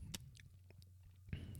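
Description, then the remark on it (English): A quiet sip of a fruity beer that is not cold, from a glass: soft mouth and lip sounds with a brief wet click at the start and another near the end, no talking. “I think I can get a sip.”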